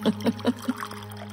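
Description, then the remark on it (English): Martinis pour into two glasses in four quick, evenly spaced glugs, fairly quiet, ending in a soft trickle over a low steady hum. “Veronica poured the 2 martinis and completed the concoctions with 2 olives apiece.”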